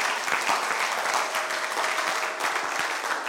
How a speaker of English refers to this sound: Why don't you clap for the Lord as you take your seats? That was a poor clap for the Lord.